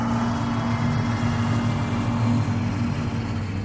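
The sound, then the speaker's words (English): Mr. Avery's truck drives in, its engine rumbling steadily at low pitch, a continuous droning hum with no voices. “And with that, he walked out to meet Mr. Avery's truck as he drove in.”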